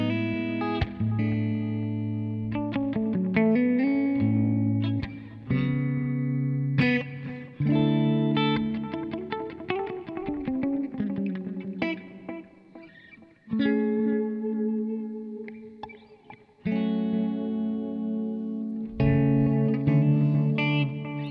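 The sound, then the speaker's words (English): An electric guitar played through an amp model with delay, using a guitarist's settings, alternating sustained chords and quick single-note runs with a driven, effected tone. It is loud, and no one speaks. “And these are the … settings as well.”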